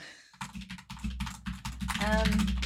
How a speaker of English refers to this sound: Why are you typing while we're doing a podcast? Don't do that.